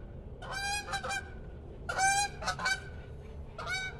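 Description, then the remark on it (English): A pair of Canada geese honk in loud, harsh bursts, several calls in quick succession separated by short pauses, sounding agitated like an alarm call rather than a casual migratory flight call, with no voices present. “Only two, just a pair of Canada geese. And their call doesn't sound quite right. It sounds like an alarm call instead of the casual call of the migratory flight.”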